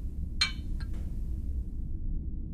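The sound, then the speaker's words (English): Glasses of Johnny Walker Black Label whisky clink together in a toast: one bright, ringing strike followed by two quicker, softer taps, over a steady low background rumble with no talking. “Let's start the show off with a little cheers and a little chip.”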